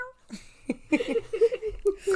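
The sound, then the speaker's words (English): A person imitates a cat's meow: a drawn-out, nasal, pitched vocal sound broken into several wavering bursts, with a laugh-like quality and no other speech. “They're the king of the jungle. Meow.”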